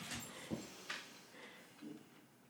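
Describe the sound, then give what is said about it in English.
A dog named Oakley whimpers softly in a few short, broken whines mixed with faint snuffling, with no one talking. “I'm sorry, Oakley's being really loud today. Right on cue.”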